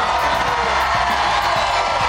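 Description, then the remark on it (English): A large crowd at a President Trump rally in Perry, Georgia, cheers and shouts loudly and continuously, chanting "USA, USA", a dense roar of many voices with occasional louder yells rising out of the noise. “When he finished, the people started shouting, USA, USA.”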